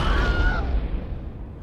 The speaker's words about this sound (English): Sly opens the door to the room and an explosion goes off.